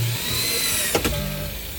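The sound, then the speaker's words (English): A power drill whirs steadily with a thin, high motor whine, broken by two quick sharp clatters partway through before the hum carries on. No one speaks. “His power drill in his custom window.”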